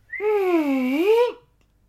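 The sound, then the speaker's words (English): A slide-whistle effect, apparently imitated by a voice or mouth: a single loud, reedy tone about a second long that dips down in pitch, then swoops back up before cutting off. “if you're open to suggestions, a slide whistle sound right after I said I don't want to taste his meat.”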